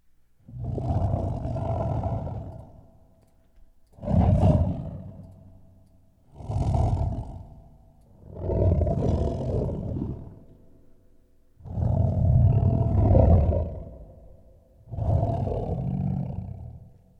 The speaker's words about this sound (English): Next up, I took some creature roars and growls and whatnot, and I kind of layered those on.